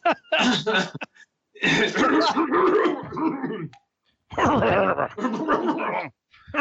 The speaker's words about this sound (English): …, if you clear your throat one more time in the mic, I swear to God.